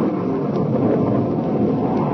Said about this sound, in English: A storm's breaking! And it's raining!